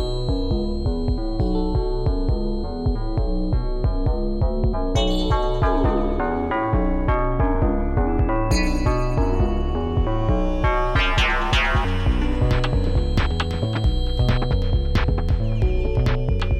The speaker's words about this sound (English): It gets better after the 33 moment when I restart the recording, but it might be a bit poppy at first. Apologies.